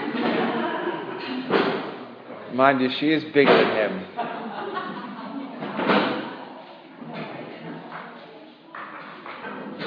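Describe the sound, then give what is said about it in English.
Chairs clunk and thud as six chairs are carried and set down, a man carrying two and a woman four, several knocks clustered together, while a person talks over the clatter. “The bloke carries 2 chairs and the woman takes 4.”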